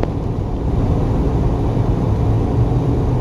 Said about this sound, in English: Yes, I know I'm going slow, god damn it. I can't make this car go any faster than fucking 75 miles an hour.